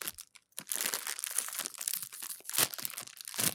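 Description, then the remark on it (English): A packet of Monster Munch crisps is torn open and crinkled, a dense run of sharp, papery crackles and rustles lasting a few seconds with brief pauses between bursts. “All right, so this next one I think we need to open the Monster Munch for.”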